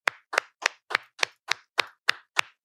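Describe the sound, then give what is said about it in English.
About ten sharp hand claps in a steady, even rhythm, roughly three per second, crisp with quick decays and silence between each clap. “Clap your hands if a head counts as a body.”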